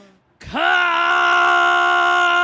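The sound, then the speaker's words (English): A man lets out a loud, sustained yell, his voice rising sharply then holding a strained, drawn-out shout for a couple of seconds, forceful with no other talking. “Why the fuck are you yelling?”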